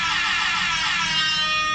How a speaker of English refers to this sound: And I've got to play a special air horn for both Lou and his co-host and producer, Willie Do.